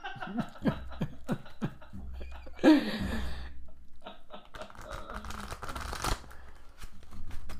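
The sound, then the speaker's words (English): A deck of cards being shuffled in a standard way, with a series of crisp snaps and flicks building into a quick fluttering riffle, followed by softer rustling and tapping of the cards. “I'm going to shuffle them just sort of standard here.”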